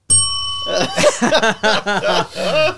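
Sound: bell ringing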